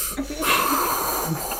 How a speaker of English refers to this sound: I think everyone should do a breath in. Should we all do that? We can sync it. We can use it to sync.